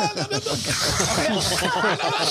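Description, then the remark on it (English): A voice mimics strong wind roaring over a satellite phone line, as heard in a message left on a sat phone: a continuous, fairly loud breathy hiss with rough, crackling voiced bursts running for about two seconds, without any words. “It was so windy that all she heard was.”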